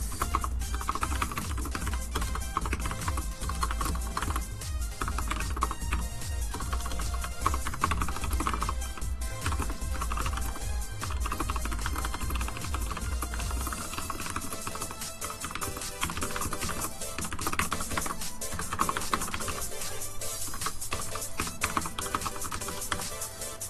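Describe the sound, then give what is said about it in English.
Rapid, continuous clacking of keys on a computer keyboard as someone types out a tweet, fairly loud, with irregular bursts of typing over a low background hum that drops away partway through; no one speaks. “Those infamous keyboard sounds.”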